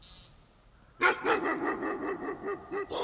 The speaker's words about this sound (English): I slowly moved away from the barking, thankful for the neighbor's invisible fence. It's difficult to explain yourself to strange dogs in the dark.